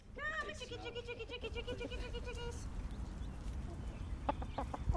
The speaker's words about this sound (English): I can see the chickens off down the bend picking through brush